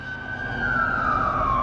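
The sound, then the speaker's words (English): An emergency vehicle siren in New York City during the 2020 COVID pandemic wails steadily, a single sustained tone gliding slowly downward over a low rumble of traffic, moderately loud, with no voices present. “When you heard those sirens, and you heard them at all hours, you wondered, did COVID get another one?”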